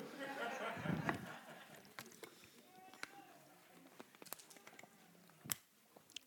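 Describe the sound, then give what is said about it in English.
Someone sips water: a soft slurp at the start, then a series of quiet swallows, lip smacks and small clicks spaced out over several seconds. “While I get a sip of water.”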